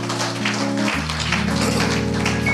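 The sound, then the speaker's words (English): Believers give God a hand clap of praise after a prayer: a dense wash of applause running throughout, layered over loud sustained organ chords that shift partway through. “And every believer, give God a hand clap of praise.”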